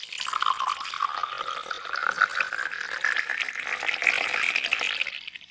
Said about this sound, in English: She then poured a large amount of betadine into a metal bowl.